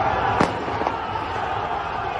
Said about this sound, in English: there's riots. There's police cars on fire. There's people swarming the cops. There's explosions. There's gunfire.